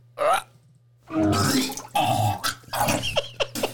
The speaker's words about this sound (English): That's gnarly. You need to find a different puke sound bite, because that's a lot. That's chunky.